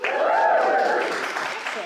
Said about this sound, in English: So let's get one final cheer for that.